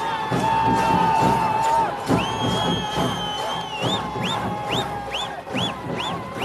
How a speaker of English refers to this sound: The Dhol Tasha is reaching its peak, and the crowd of people, easily over a few thousand, just cannot stop cheering and dancing. It's an apt farewell to Lord Ganesh.